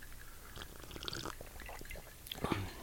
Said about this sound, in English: Okay, here we go. Sips.